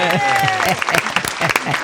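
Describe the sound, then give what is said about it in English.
An applause sound effect, played at the club as guests come out: a burst of crowd applause, dense crackling claps at a steady loud level, with voices talking and laughing over the clapping throughout. “The obligatory applause sound drop.”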